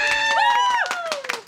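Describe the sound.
Audience applause: a steady patter of many hands clapping, with a loud, sustained cheering voice that rises and then slides downward in pitch over the top.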